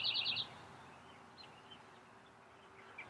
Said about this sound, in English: Now, I am somewhere in America. It is springtime. It's gorgeous. The sun is going down. There's birds all around me. The green is coming back into the world.